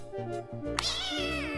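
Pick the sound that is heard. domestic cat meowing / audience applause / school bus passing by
domestic cat meowing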